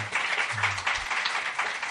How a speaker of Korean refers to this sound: 네, 그래가지고 어쨌든 목표했던 5,450m 지점까지 네. 올라갔습니다. 아 박수 네. 한번 주세요.